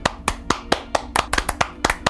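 About a dozen sharp hand claps in a brisk, fairly even rhythm, each a crisp burst, with a faint low hum running underneath and no talking.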